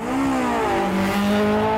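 A car speeds past on a motorway, its loud engine whine dropping in pitch as it goes, with steady road roar throughout and no voices.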